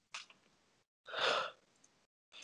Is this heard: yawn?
yes